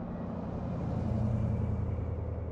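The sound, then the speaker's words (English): A car engine rumbles steadily, swelling slightly louder midway as it passes, with a low droning hum and no voices. “Car's coming!”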